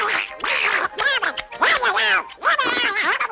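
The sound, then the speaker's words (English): A high, squawking duck-like voice of a person breathing helium while working at depth chatters in rapid garbled bursts for several seconds, loud, sounding like unintelligible quacking speech. “Yeah, apparently they call it like duck voice and it's almost incomprehensible.”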